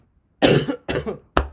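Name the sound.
cough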